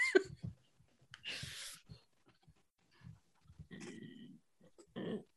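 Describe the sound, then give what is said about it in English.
Someone imitates loud, rumbling, chainsaw-like snoring of a sleeping character, with a few raspy snorts and breathy pauses between throaty drawn-out rattles, the last couple of snores louder and harsher. “So with a 14, you do hear Gordo's chainsaw snoring from over there.”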